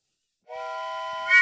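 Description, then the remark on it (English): A single sustained whistle blast, steady and fairly loud with a rich harmonic tone, lasting about a second and ending in a brief breathy burst. No one speaks. “are we ready to blow the whistle?”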